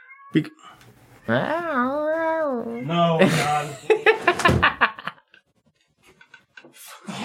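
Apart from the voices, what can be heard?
cat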